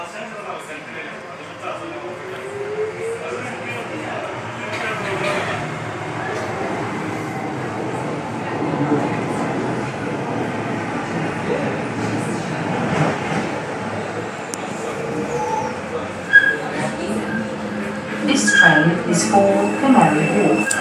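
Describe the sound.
A light rail train rumbles steadily along between stations, arriving at West India Quay, motors whining up in pitch over a constant rolling roar, with a few clanks near the end and muffled voices in the carriage.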